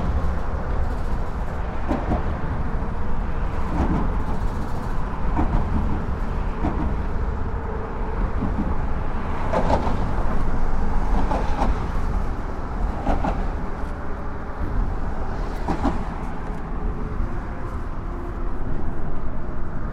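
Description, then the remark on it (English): Steady traffic rumble with repeated metallic thumps and clanks as cars roll over the plate in the middle of a bridge above a creek, heavy low-end drone throughout and sharper impacts every few seconds, no voices. “This is the plate in the middle above the creek. Cars crossing.”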